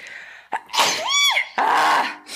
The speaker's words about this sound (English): I'm so tired of sneezing. I hate it. Sorry. I'm not laughing at you. I'm just laughing at the noise you made because it was amazing. I'm just so tired of sneezing. My nose just feels so strange.